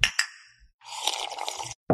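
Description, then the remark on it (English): Beer glasses clink together twice in quick succession in a toast over a second round of beer, each with a short bright ring, followed by a stretch of sloshing, rustling noise and another sudden knock at the end. “Beer number two, guys. You guys ready? I'm ready. Yep. All right. Cheers. Cheers.”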